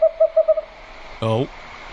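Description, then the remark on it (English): An owl hoots: a quick run of five short, even hoots, then after a brief pause one louder, rich, slightly falling hoot, heard alone. “Twit twoo. It's an owl on a trampoline.”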